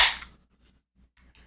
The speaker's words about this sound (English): I like episodes where you can hear glasses clinking. Yeah. Like ice cubes. Yep. Shuffling around inside glasses makes me feel like, oh, this is like two people hanging out